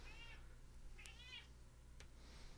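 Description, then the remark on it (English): A female cat meows at a door a few times in quick succession, with high, slightly wavering cries and a couple of short clicks in between, over a steady low background hum; no one is talking. “Now she's not going to meow anymore, but sorry about that break.”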